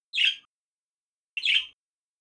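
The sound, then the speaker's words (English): Two short, bright chirps from two birds, evenly spaced about a second apart, clear against silence. “Yeah, there are two birds.”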